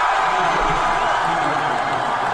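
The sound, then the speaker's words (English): A large crowd at a Donald Trump rally in South Carolina cheers as Trump shows up, a loud, dense, steady, unbroken roar of many voices with no single speaker standing out. “And I've got a few of those clips, different moments of the crowd reaction to Trump just showing up there in South Carolina.”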